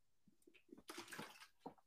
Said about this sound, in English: Did you hear it? Take a swig of that water? Mm-hmm. Sure did. That was audible.